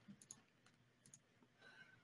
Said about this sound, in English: Yeah, I'm typing in initiatives now.